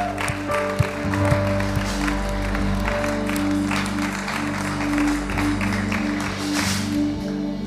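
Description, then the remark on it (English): An audience breaks into sustained applause, a dense, steady patter of many hands clapping for several seconds without letting up, over a faint low hum. “Why don't we give her a massive round of applause?”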